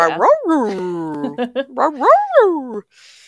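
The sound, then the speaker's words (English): Mishka, the talking husky, makes a string of loud, voice-like yowls and whines, its pitch swooping up and down in several short phrases as if trying to talk, then falls silent. “unless they are actually able to say it like Mishka, the talking husky.”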